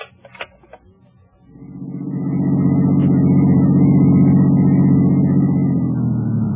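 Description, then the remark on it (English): A few sharp clicks and knocks, then a car engine starts up and roars steadily and loudly, its low hum holding strong before easing slightly as it drives off. “I parked my car, went on upstairs,”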